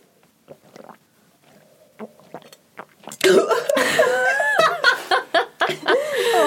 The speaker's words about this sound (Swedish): Ta en klunk. Mm. Och det här är riktigt obehagliga ljudet när man dricker in i micken.